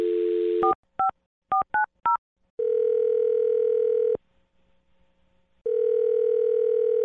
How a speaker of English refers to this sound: Well, I'm going to dial his phone number right now and see if we can figure it out for you